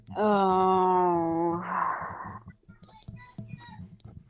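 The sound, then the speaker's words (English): At 9:45 at night, a child lets out a long, loud, drawn-out scream that slowly falls in pitch, then breaks into a rough cry before fainter chatter and voices continue underneath. “Even I can hear someone's kids screaming”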